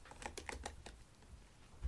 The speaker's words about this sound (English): typing noises. I typed it in the chat.